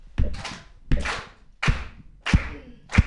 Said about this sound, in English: I do need some help with the beat because I didn't bring my own speaker. So I need everyone to clap with me. Everyone has to clap. Here we go.